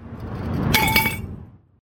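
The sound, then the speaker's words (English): A few taps on the thick glass of a Thick Ass Glass water pipe ring out clearly, leaving bright lingering tones over a low rumbling handling noise that fades out within a second. “From the mouthpiece to the stand to the percolators in the middle, you can tell that this is really thick glass.”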